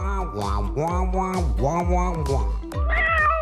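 A cat named Mr. Whiskers meows repeatedly and loudly, a run of drawn-out, wavering meows in quick succession with a slightly higher-pitched call at the end.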